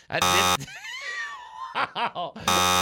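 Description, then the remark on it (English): A harsh, flat electronic buzzer blares in two loud bursts, buzzing someone telling jokes, the second cut off at the end, with gliding vocal sounds and choppy laughter-like voices filling the gap between them. “I got buzzed three times?”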